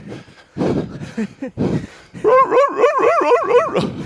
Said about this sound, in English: Is that your mate, the dog? Yeah. My mate, the dog.